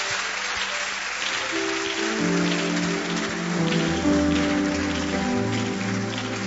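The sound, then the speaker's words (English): Steady, dense clapping from a crowd fills the whole stretch, a continuous patter like rain, with a low tonal hum running underneath and no speech. “Are you clapping or I don't clap?”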